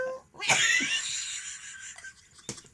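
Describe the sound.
A person lets out a shrill, wailing laugh that mimics a cat's caterwaul, rising sharply then trailing off over a couple of seconds, followed by a brief breathy burst near the end.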